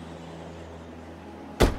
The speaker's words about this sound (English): She jumps at the sudden slam of a car door. She reels around and watches as her fellow witnesses climb back in their taxicab and drive away.